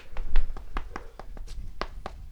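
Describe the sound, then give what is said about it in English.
A quick run of roughly ten sharp taps of feet stamping on a floor as applause, in an irregular applause-like rhythm, moderately loud with no talking. “Let's foot clap for him.”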